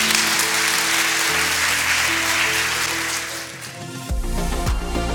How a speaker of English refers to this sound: Let's give God a great big hand clap and let's bless Him right now.